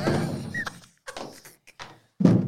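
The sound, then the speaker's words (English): A chair is thrown and clatters down in a series of heavy thuds and knocks, with a brief scraping squeak, ending in one more solid thump. “A chair's been thrown.”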